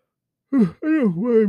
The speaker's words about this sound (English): I'm sorry for yawning.